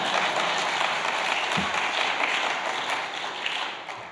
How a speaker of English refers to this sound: That was an applause line. Can we?